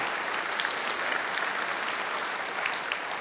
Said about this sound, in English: Can we give them a round of applause for sharing their stories?